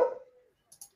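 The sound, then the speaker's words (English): A single short, loud bark from the dog Moxie, trailing off quickly, followed by a couple of faint, brief hissing sounds near the end. “Anyway, my hot take is my very specific hot take is if my dog will let me get a word in edgeways.”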